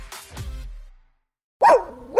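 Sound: dog barking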